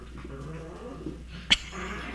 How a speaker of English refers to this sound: Listen to my dog.